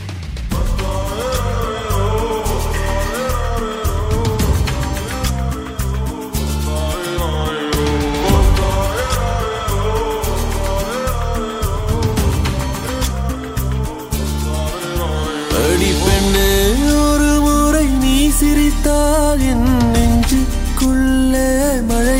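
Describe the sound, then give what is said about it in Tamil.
A song played on GSPDT campus radio as a birthday dedication plays loud and steady from start to finish, with full band instrumentation, a strong bass line and a melody that grows fuller and brighter in the last few seconds. “So இவங்களுக்காகவே ஸ்பெஷலாக ஒரு song இப்போ ப்ளே பண்ண போகிறோம், கேட்டு என்ஜாய் பண்ணுங்க.”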